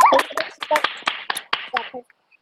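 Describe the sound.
A short burst of scattered applause from several people in an online video call clapping over unmuted microphones at an uneven pace, with a few voices mixed in, loud at first and then thinning out before ending abruptly.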